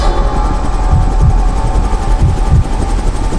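A helicopter in flight: a loud, steady roar of engine and rotor noise with low, pulsing thumps running throughout, and no voices.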